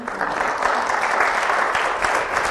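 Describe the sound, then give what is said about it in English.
Steady, sustained applause from an audience after a song, a dense wash of many hands clapping at an even loudness for the whole stretch, with no voices. “You sing like that and get an applause.”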